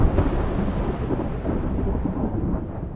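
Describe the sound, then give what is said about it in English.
A loud, deep roll of thunder from a lightning storm outside a bedroom window rumbles continuously, heavy in the low end and fading only slightly over a few seconds, with no voices. “The lightning outside my window then lit up the bedroom.”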